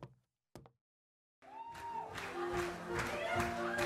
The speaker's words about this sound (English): We entered the saloon to a sea of animated cowboys laughing while gesturing their cups into the air, cheering.